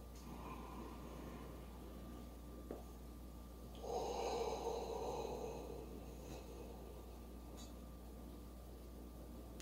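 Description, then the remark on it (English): Slow breathing over steady background hiss, with one fuller breath swelling for about two seconds in the middle; air drawn in through the nose and released through the mouth, simulating a yawn. “The breathing in through the nose and out through the mouth is just simulating a yawn, which I've already discovered in another way.”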